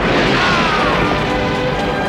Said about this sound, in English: And weirdly, he blows up an indoor beehive. It's in a pod.